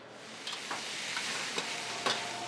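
Steady sizzling of food frying in a pan as a cook prepares takeout food, a broad hiss throughout, with several sharp scraping clicks of a utensil stirring at irregular intervals. No one speaks.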